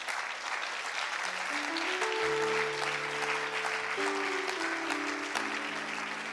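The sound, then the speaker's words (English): An audience at Heaven View's afternoon service claps steadily for its guests, a dense, continuous wash of hand claps with no break. Sustained organ or keyboard tones rise in steps beneath the applause. “Can we give all of our guests a wonderful hand clap?”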